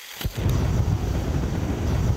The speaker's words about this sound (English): It might make you imagine a jet engine, but it's actually roaring methane set on fire as it leaks from a melting bubble. Methane that's a remnant of the frozen landscape that was here thousands of years ago.